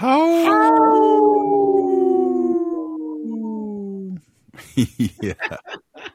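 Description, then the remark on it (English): Dallas Goldtooth, in the Reservation Dogs promo, imitates a wolf with one long, loud, wavering howl that slowly falls in pitch for about four seconds, followed by a short burst of chuckling laughter. “There's a couple things that always crack me up in the show, and that's when Dallas Goldtooth does the promo in from Reservation Dogs and Howling.”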